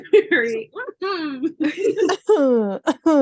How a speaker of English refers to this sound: It sounded really intentional. It sounded really intentional, but it wasn't. I'm very sorry, I was just vocalizing clearing my throat.